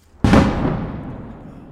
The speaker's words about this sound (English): Every day, hundreds of shells are lobbed into Kherson and the surrounding areas from across the Dnieper River by the Russian forces who retreated from the city last November. Explosions shake the city and its outskirts every few minutes.